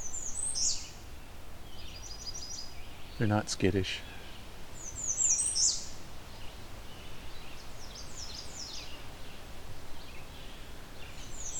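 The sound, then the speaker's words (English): High, thin warbler song rings out in several short bursts, including a quick trilled phrase, over a quiet outdoor background, with a voice briefly speaking partway through. “They're fairly friendly warblers.”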